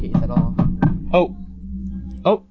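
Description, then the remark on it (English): Four quick, evenly spaced knocks on a door over a steady low hum, followed by a couple of short voiced sounds. “Somebody's at the door.”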